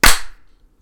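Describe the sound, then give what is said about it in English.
A single sharp hand clap made to sync a recording, loud, with a bright snappy attack that fades quickly into a short tail, then near silence. “All right, let's clap down. 3, 2, 1.”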